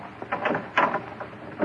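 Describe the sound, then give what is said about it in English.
A handful of muffled, irregular thumps and scraping rattles at a door as a constable arrives at night, with one louder bump in the middle and no voices. “A lantern outside. Someone at the door.”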